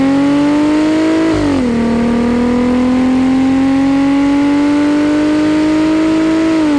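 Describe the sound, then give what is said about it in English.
A Jeep Gladiator with a Borla exhaust revs up loud, its harmonic engine note climbing, dipping briefly, then holding a steady high rasp before rising again, with no talking. “Doesn't that sound like a European sports car?”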